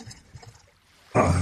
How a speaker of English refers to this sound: Now we gotta take this, take the pressed coconut, we're gonna pour that right into the vodka. There we go.